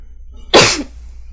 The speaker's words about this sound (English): Sorry to sneeze.